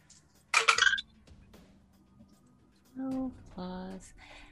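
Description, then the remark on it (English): A quick, bright clatter of dice rattling and tumbling for about half a second, rolled for a second-level Cure Wounds spell. Quiet stretches follow, then a couple of brief voiced murmurs near the end. “Get my dice here.”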